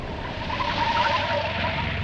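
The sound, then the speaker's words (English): Car tires skid loudly to a stop, a sustained screeching squeal with rough road noise underneath, lasting about two seconds. “Hey, Mac, stop the car!”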